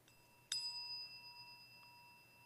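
A single meditation chime is struck once and rings out alone, its clear metallic tone lingering and slowly fading over a couple of seconds in quiet.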